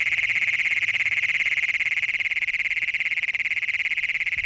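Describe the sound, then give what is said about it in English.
Advertisement calls of adult male Great Plains toads (Bufo cognatus): a loud, shrill, buzzing trill of rapid even pulses that drones on unbroken from start to finish, with no talking. “These so-called advertisement calls by adult males hoping to find a mate were recorded”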